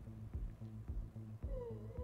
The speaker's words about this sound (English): This is my cat Petal. She's being very needy today.